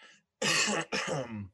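Two harsh coughs in quick succession from a man ill with COVID, loud, preceded by a brief soft breath. No speech accompanies them.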